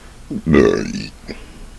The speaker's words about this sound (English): That was a welcoming burp. The belch, customary after you finish a great meal.